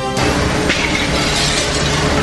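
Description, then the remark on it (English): Glass shatters with a sharp, loud crash about a second in, over the dense, continuous roar of flames from a major building fire that destroyed seven businesses and one home in Vancouver's Carisdale neighborhood, filling the whole recording. No voices are heard. “Breaking glass and roaring flames as a major fire destroys 7 businesses and 1 home in Vancouver's Carisdale neighborhood.”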